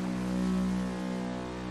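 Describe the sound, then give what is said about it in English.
A loud, sustained horn blares out from the land on one steady low pitch with rich harmonics, holding strong for nearly two seconds with no voices present. “When nearly all hope has been lost, they hear a loud horn ring out from the land.”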